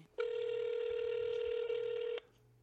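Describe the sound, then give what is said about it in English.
A single loud, steady electronic phone tone rings out for about two seconds as someone calls a person back, then cuts off, leaving a quiet background. No one speaks. “I'm going to try calling him back.”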